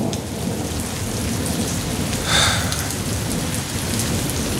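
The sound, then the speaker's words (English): Steady rain pours down in a dense, even hiss, with a low rumble of thunder rolling underneath and a brief swell of louder spatter midway. No voices. “What that rain do to you?”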